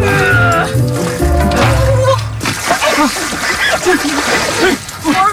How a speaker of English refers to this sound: Well, you know, I will tell you this. It's a kind of a polar plunge type thing. You get in the ice where I understand